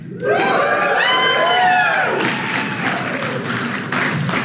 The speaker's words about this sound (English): I earned every bit of that applause. Apparently now I'm an expert on marriage.